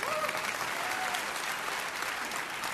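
Steady audience applause fills the whole stretch, a dense, even patter of many hands clapping at a fairly loud, constant level, with a few faint voices calling out underneath.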